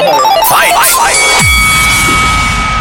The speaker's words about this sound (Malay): Okay, lepas bunyi loceng eh,